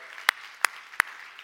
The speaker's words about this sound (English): They celebrated 54 years of marriage just like 3 days ago. Yeah, give them applause.